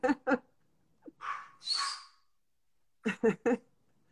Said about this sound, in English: Is that your puppy? That's not my puppy.